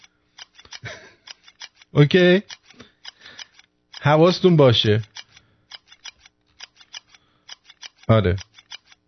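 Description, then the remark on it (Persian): A scissors sound effect: scissors snip over and over in quick, uneven runs, crisp, while a man speaks a few brief phrases in between the cutting. “این صدا یعنی که قیچیش کن.”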